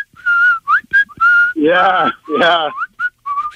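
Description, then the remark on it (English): A person whistles a short, catchy film-theme melody, with steady sustained notes broken by two louder, rougher sung or hummed swells in the middle. “What would you like your car horn to sound like? The whistle from Kill Bill.”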